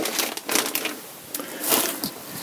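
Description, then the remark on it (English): Scissors snip and slice through a plastic bag holding a defrosted frozen duck, running up its side and cutting the end off, with crisp crinkling and rustling in short irregular bursts, one louder tearing swell near the end and no talking. “So let's take this bag and run the scissors up the side of it, as well as cutting that end off.”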